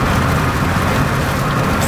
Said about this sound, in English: It just started raining. The rain in the background.